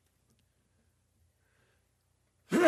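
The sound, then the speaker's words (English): Near silence, then a single sudden sneeze bursts out at the very end, loud, sharp and breathy with a brief voiced edge, cut off almost as soon as it starts. “Jesus, I heard Excuse a sneeze.”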